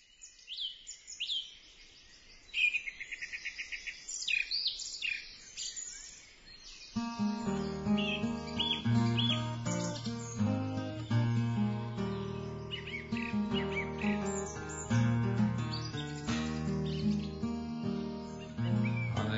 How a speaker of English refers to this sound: And by the way, the bird song throughout these two pieces, lovely as it is not my invention. It's actually on the track.